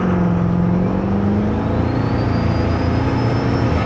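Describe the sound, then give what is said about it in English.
A truck engine accelerates with a loud, steady roar, its pitch climbing gradually alongside a faint high whine. It is continuous, with no talking over it. “You literally, there is never a time in this truck that you are on the road and need to be above about 20% throttle.”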